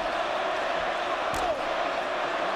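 A huge wrestling arena crowd roars continuously in a dense, steady wall of cheering and yelling for Hulk Hogan during his match with The Rock, with a brief sharper burst of noise midway through and no clear individual voices.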